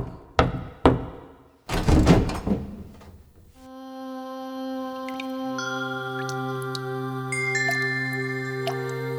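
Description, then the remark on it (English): A few sharp knocks on a wooden door ring out, a couple of single raps followed by a quick flurry, as Pratikami, Duryodhana's attendant, knocks on Draupadi's room door in the palace's inner quarters, then soft sustained musical tones take over. “He walked up to Draupadi's room and knocked on the door.”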